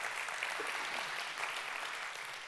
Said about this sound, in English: And I want to encourage you. Yeah, you can give yourselves a hand clap right there.